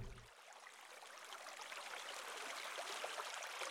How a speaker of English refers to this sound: Then we clean the pool and we dump the water out. Splash, the water sound.